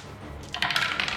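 Seven dice clatter onto a table in a quick, rattling burst of small hard clicks, fairly loud, following a brief quiet moment with no one speaking.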